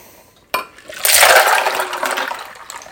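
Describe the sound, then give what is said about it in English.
A drink is poured into a cup: a brief clink, then a steady, splashy stream of liquid running for about two seconds, with no one talking. “Witch, you're going to have a double tonight. Because I do not think I'm going to be able to pour.”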